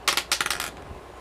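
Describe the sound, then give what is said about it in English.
Dice clatter across a hard table in a quick burst of sharp clicks that tumble and fade within a second, followed by near silence. No one speaks. “I got a 10 to roll for that.”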